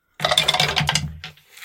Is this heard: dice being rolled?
yes